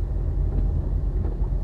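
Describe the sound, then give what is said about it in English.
Inside a car stopped in bumper-to-bumper traffic, a steady low engine rumble hums continuously with faint muffled road noise, even in level, with no one speaking. “Okay, right now I'm stopped in bumper-to-bumper traffic, so I'm able to end the recording”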